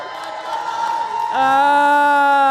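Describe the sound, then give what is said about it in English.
A small audience cheers and shouts together for a participant on stage, then a single loud, sustained whooping yell rises over the crowd noise and holds to the end. “Come on, you got to cheer for him.”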